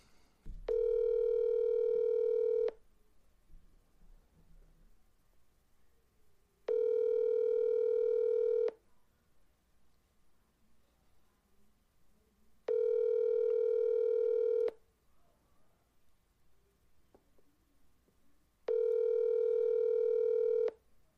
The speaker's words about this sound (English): I think we should try to give David a call